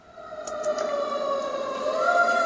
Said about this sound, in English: A fire truck.